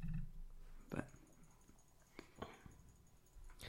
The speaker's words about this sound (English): Luckily, I'm not clicking properly. It's only every so often. Because I'm normally playing it. It sounds a bit more like that. But yeah, it's been quite fun. If I was rapidly clicking, it would be like.